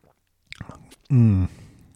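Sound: sipping wine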